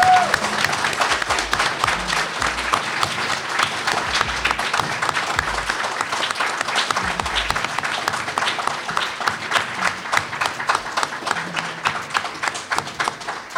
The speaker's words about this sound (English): Everyone, I want a real round of applause